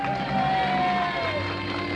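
An audience claps steadily for a couple of seconds, a dense, even wash of hand claps mixed with crowd murmur, a low hum and a faint sliding tone underneath.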